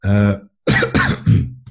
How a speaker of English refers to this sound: Let's have a little bit of a cough.